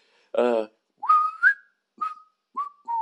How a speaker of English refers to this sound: Well, I can do that as well. I can whistle that one for you now, and you can see what.